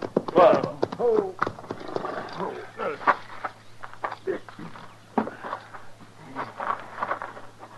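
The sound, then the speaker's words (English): Horses' hooves clop irregularly as riders bring them to a stop to rest them, mixed with rough breathy animal noises and a low steady hum underneath. “So we better breathe our horses a little. Let's stop here.”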